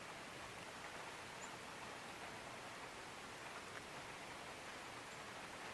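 Gentle rain falls in a soft, steady hiss that stays even throughout, with no distinct drops standing out and no voices.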